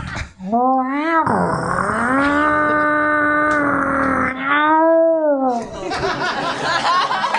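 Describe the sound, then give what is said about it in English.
A voice imitates a chainsaw and a lawnmower at once: a loud, buzzy, droning tone that revs up and down in pitch for several seconds, then breaks into rougher, noisier sounds. “can you open the door, but also do a chainsaw and a lawnmower at the same time?”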